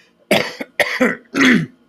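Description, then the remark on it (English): Three loud coughs with a throaty rasp, the last one longer and more like a harsh throat clearing, with brief silences between them and no talking. Someone coughs in a new studio in Fort Mojave, caused by the smell of new carpeting. “And of course the new studio has brand new carpeting, and so I may be coughing a little bit due to the new carpet smell.”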